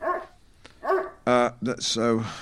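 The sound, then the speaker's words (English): A dog named Seldom, a 250-pound brown dog, barks in a quick, uneven run of four or five sharp, tonal barks and yelps, some clipped short and others drawn out slightly. “He very much put the dog into documentary.”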